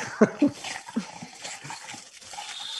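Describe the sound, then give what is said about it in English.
A dog named MJ lets out a couple of sharp, high yips followed by softer whimpering and whining, with a faint voice murmuring underneath. “This dog won't let me over here, unfortunately.”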